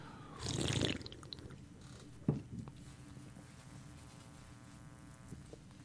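A big second swig of beer, a full pull: a short, wet slurp and gulp, then a single soft knock and a quiet background. Nobody speaks.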